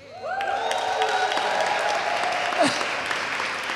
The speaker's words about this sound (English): She's clapping for herself, really.